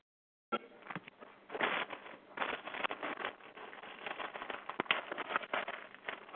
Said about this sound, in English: Someone's washing the dishes, I think. Yes. Someone's unmuted, maybe in the kitchen.